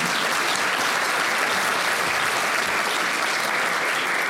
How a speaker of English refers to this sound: So big clap, even though she's not here, for Eleni.